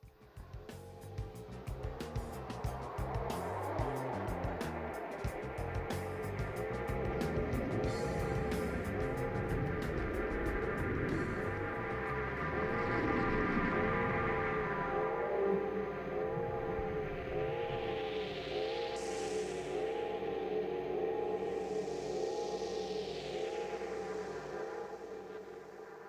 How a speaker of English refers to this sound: Are you talking about the lava spawn sound? Yeah, it's like a howling wind / siren. Yeah, when you're climbing Death Mountain in Chrono Trigger.